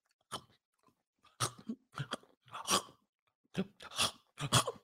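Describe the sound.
Wet chomping and chewing on a tough Costco steak: about eight uneven, loud bites and smacks in irregular bursts, with short pauses between and no talking.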